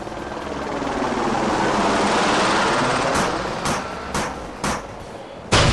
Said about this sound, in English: there was a helicopter gunship circling around above us.